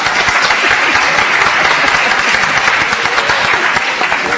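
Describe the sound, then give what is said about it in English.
Sustained audience applause, a dense, steady wash of many hands clapping at an even loudness for several seconds with no voices standing out. “For which we also need to give Mary Helen a round of applause.”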